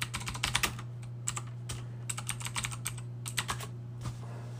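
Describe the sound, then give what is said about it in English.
Rapid, irregular clicking of computer keyboard keys as someone looks something up, fairly crisp, in bursts with short pauses, over a steady low electrical hum; no one speaks. “I just want to make sure that I don't sound too foolish here, even though I'm sure hearing me click on my keyboard makes me sound all the more foolish.”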